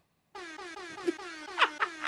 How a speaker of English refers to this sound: I don't know why these keep making me laugh. Because your face don't match the sound effect. You're just like, air horn.